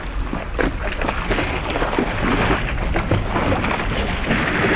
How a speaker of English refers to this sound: The iceberg, there's overhangs. You can hear the water that laps underneath the ice.